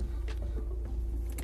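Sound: car interior ambience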